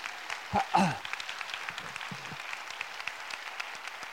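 A room full of people applauds steadily, a dense patter of many hands clapping at moderate volume, with a brief voice cheering or calling out near the start.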